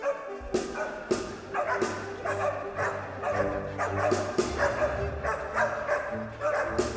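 Several dogs bark and yap repeatedly amid a full orchestra performing the third movement of a hunting symphony, the sharp barks popping out over sustained strings and brass throughout.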